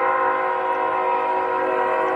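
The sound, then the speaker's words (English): A freight train on a merchandise track in Colorado, about half a mile away, sounds its horn in one long, steady, loud blast with rich layered tones, holding at constant volume as the train passes. No one speaks. “I wish we had a train in Nicaragua.”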